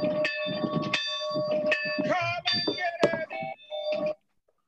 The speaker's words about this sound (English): But I thought we would start here with ringing in the bell, and let's see if I can get this to go.